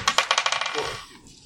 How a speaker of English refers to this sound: This thing comes above a 12. My dice rolled above the 12.